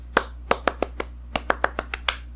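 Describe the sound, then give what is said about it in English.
A hand slapping on a knee about eleven times in a quick, slightly uneven rhythm, each slap a sharp, crisp smack over a low steady hum, with no voices. “And that was not a clap, that was a slap on my knee.”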